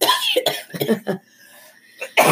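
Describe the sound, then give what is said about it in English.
A loud fit of several harsh coughs in quick succession, a brief quiet pause, then another forceful cough to finish. “You gave her coughing to me.”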